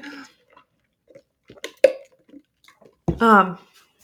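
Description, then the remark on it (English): Quiet sips and soft gulps from someone drinking water, a few small clicks and swallows spread out, ending with a short voiced exhale after the last swallow. “I'm going to grab a drink of water quick.”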